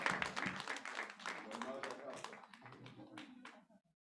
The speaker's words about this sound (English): Clap for her for 35 points.